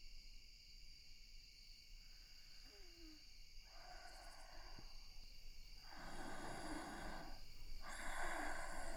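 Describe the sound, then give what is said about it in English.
Slow, heavy breaths heard from outside a door, coming in three or four drawn-out rushes, growing louder toward the end, over a steady faint background hum with no talking. “I think they're out in the hallway because I can hear them breathing.”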